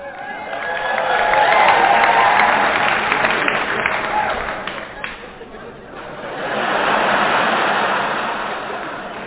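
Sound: applause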